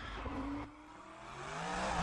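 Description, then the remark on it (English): A turbo race car drifts up the turns of Pikes Peak, its engine roaring and tires squealing in a sustained, rising screech, loud, with the engine pitch climbing steadily through the two-second run. “just drifting up them. I mean, just nice, clean drifts, nothing like, you know, crazy, but takes a ton of skill.”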